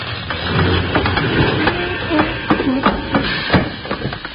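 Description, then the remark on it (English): A steam train grinding to a halt under its brakes, with a constant loud rumble and hiss broken by repeated heavy metallic clanks and knocks, and no voices. “Those brakes sure worked since we got them fixed.”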